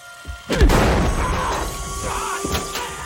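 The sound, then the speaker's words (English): A single loud gunshot rings out as a gun is fired after its barrel is knocked aside, hitting a man in the shoulder: a sharp booming crack that rumbles and lingers as it fades, followed by a fainter knock a couple of seconds later. No one speaks. “Does shoot, and it shoots one of his mates to the shoulder.”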